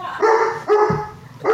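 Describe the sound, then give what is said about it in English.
A person mimics a barking dog, letting out three loud woofs in quick succession, each a short harmonic yelp, with the last one cut off. “Hey! Woof! Woof! Woof! Woof.”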